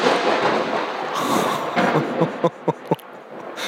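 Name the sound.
thunder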